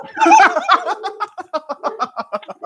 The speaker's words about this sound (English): I don't know if you just heard my dogs go nuts because the UPS guy showed up. But. Oh, yeah. Are you going to bite the mailman? Are you going to bite him? I'm hoping that he's just dropping the package off.